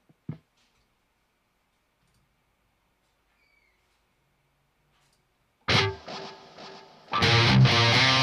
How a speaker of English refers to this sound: I was usually using that big crazy ambient patch on those last two. But, yeah, I'll turn on some echo because echo's fun.